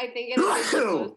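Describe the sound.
A single loud sneeze bursts out mid-sentence, a sharp breathy blast with a voiced tail, surrounded by a person's casual speech.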